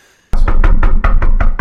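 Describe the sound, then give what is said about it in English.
Loud, rapid knocking on an apartment door starts abruptly after a brief silence, about seven heavy raps in a quick, steady rhythm, insistent, with no voices. “a loud knock rings out throughout the apartment.”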